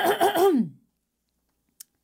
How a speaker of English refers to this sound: I'm sorry, can I clear my throat quickly for a second? Absolutely.